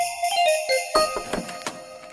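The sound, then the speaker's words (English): Jingle bells ring in a bright, shimmering metallic wash, punctuated by a few sharper shakes, holding a steady moderate loudness for a couple of seconds with no voices. “I think I'm about to be Santa'd in the jingle bells.”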